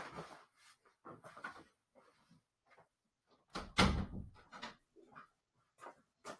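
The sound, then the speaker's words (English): A door is pushed shut with a heavy thud, surrounded by a scatter of quieter clicks, rattles and handling noises as it is latched and locked. No one speaks. “All right, I had to shut that door and lock it.”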